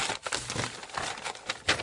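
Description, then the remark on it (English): Bits of paper being shuffled and handled, a steady papery rustling and crinkling with a few sharper bursts along the way, and no one speaking. “I feel like I've got all these bits of paper like I'm playing Dungeons and Dragons or something.”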